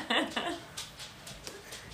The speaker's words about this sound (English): Sorry if you can hear pitter-patter. There's dogs walking around and we just, nothing we can do about it.